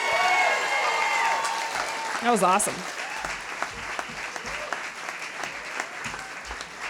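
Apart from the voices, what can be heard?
audience cheering and applause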